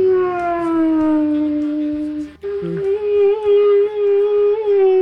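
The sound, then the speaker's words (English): An eerie, drawn-out howling of humpback whale sounds, played as ghosts yowling for Halloween: a loud sustained wail that slowly sinks and wavers in pitch, breaks off briefly midway, then resumes and holds steady. No one speaks. “Bradley gets to play the sound of humpback whales. That is the ghosts yowling.”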